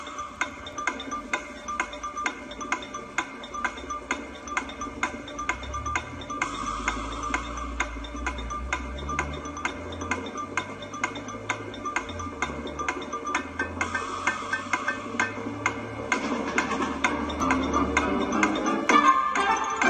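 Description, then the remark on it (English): A steady, evenly paced ticking of a 30-second countdown clock for a word game round runs throughout, layered over a light musical bed that swells slightly toward the end; no one speaks. “You're going to have 30 seconds on the clock.”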